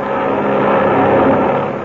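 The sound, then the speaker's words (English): A steady, loud engine drone from a twin-engine, silver-winged cabin plane flown by Ivan Shark, circling over an air battle; a continuous rumbling roar that holds an even pitch and volume throughout, with no voices. “Circling over the unequal sky battle is the bimotored silver-winged cabin plane with Ivan Shark at the controls.”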